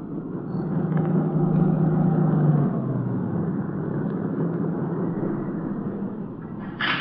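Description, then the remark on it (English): A dark-colored late-model sedan's engine rumbles as it swings off a dirt road, its low hum dropping as it pulls to a stop near a shack under steady gritty tire noise, with no voices. “It swung off the dirt road and pulled to a stop near the shack.”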